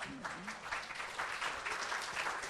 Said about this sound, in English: Got the same applause that him walking got.